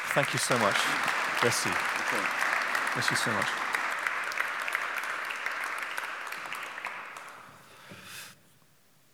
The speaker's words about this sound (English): But can we just give him a huge round of applause?